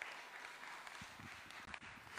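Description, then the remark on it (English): Many people clap together in a round of applause for a newly married couple, a dense, steady patter of hands. The applause is fairly soft and keeps going without a break, with no voices over it. “I think they're actually watching, so we can give them like a massive round of applause.”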